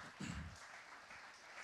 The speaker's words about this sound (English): Thank you. Round of applause